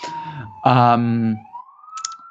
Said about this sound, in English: Probably you can already hear in the background the sirens coming for them. Little New York style interruption.